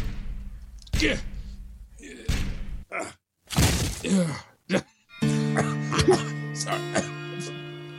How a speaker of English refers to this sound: The door's locked. Knock again, if you don't mind. She might be sleeping. Great heavens! That was a revolver shot! Come on, Watson. Help me break in the door.